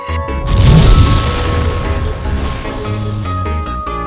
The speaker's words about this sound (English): When you say, I got this, right? Explosions.